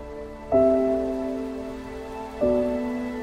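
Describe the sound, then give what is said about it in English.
A steady hiss of water spraying and pattering down like rain as a woman waters plants outside, running throughout, while two sustained musical notes ring out over it, one early and one near the end. “He looks outside and it appears to be raining, but then you see it's just a woman like watering the plants.”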